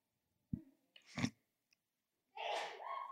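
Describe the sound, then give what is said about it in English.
A loud sneeze bursts out after a few short, sharp intakes of breath, ending in a harsh, sustained blast of noise with no one speaking. “God bless you.”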